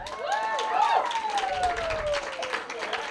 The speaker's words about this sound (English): I want you to clap the next person all the way up for their story